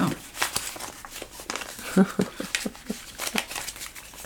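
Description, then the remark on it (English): Paper crinkling and rustling as sheets are folded, with a series of sharp, irregular pokes and crackles as holes are poked through the folded layers of paper. “Yeah, I'm folding and poking holes into paper.”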